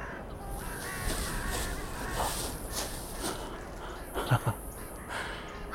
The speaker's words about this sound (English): Carrion crow.